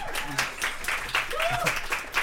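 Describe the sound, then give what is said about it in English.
A round of audience applause, a steady wash of dense clapping with sharp transient bursts throughout, and a few voices calling out and chattering underneath. “Love how forced that applause was.”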